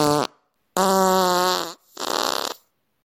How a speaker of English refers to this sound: And how could I forget Fruits with the Toots, so colorful and sweet. But oh my, their toots, a rather windy treat.